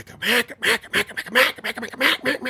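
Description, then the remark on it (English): A duck call blown in quick, raspy quacks imitating a hen mallard, a run of about ten loud notes in an uneven, chattering rhythm with no one talking. “So that's when you start doing all of the confidence stuff, the chatter, the separation calls, the feed chuckles, the lonesome hens, and you mix them in with bouncing hens.”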